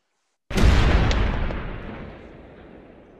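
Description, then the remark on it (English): A single cannon fires from a ship's deck: one sudden, loud boom after a brief silence, with a deep rumbling tail that slowly fades over a few seconds. No voices. “But a cannon is fired from the deck of the wasp.”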